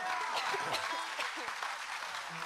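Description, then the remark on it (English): An audience at a morning concert applauds with a steady, dense wash of clapping that stays loud and even for the whole stretch, with faint voices and murmurs mixed in beneath it. “That means you can clap after a song.”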